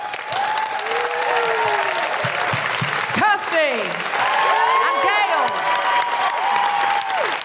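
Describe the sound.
A crowd claps loudly and steadily throughout, with shrill whistles and whoops rising over the applause. A voice briefly speaks over the noise.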